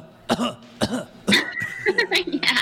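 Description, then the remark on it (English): A series of harsh coughs at the start of a rock song, three distinct hacking bursts about half a second apart, then a rougher run of quicker coughs trailing off with a faint ringing tone. “Of course. The cough part.”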